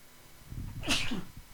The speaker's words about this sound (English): Wow, you just saw that. You saw an actual sneeze.